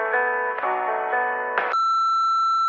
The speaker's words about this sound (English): I don't want to miss whatever you have to say, so please do your thing when you hear that beep.